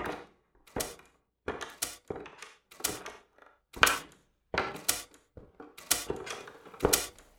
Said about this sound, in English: Why, that's his wire recorder. He left it running. These machines cost a lot of money. Doesn't he care if he uses up his batteries?